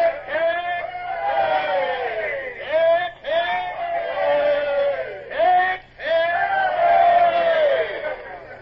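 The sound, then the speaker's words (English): Sailors manning the yards of a ship roar three long, sustained cheers for Lord Eastlake as his boat pulls away, each swelling loud and dropping away briefly before the next, with no other talk. “Man the yards and have the men give 3 cheers as Lord Eastlake's boat pulls away.”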